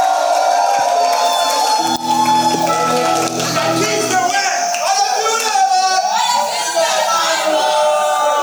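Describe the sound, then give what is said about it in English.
An audience claps and shouts to the Lord together in a loud, sustained burst of cheering and whoops, with many voices overlapping for several seconds without pause. “give the Lord a mighty clap and a shout.”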